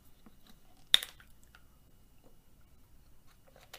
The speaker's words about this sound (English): And, excuse me. Let me drink my water.